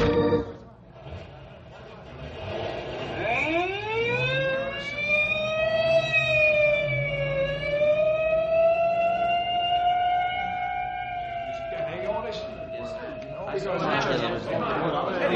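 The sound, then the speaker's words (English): An ambulance siren winds up from low to high and holds a long, loud, steady wail for several seconds before fading, with indistinct background voices and noise around it. “may I go along with you in the ambulance?”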